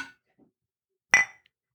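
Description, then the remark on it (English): A single bright clink of two cups knocked together in a holiday toast, sharp, ringing briefly before fading, with a faint tap at the start and otherwise quiet surroundings. “Happy cheers. Holidays. Cheers.”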